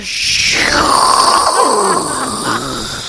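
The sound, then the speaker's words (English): A voice imitates the HBO intro static: a steady, loud breathy hiss lasting about three seconds, with a low groaning hum that slides downward and wavers beneath it. “It's just like a lot of static.”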